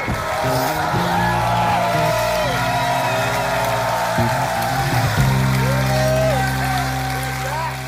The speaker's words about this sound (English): Halfway through his video message, the Salvadoran president's words were drowned out by cheering crypto fans. The crowd basically, you know, rose to a standing ovation and everyone went mad.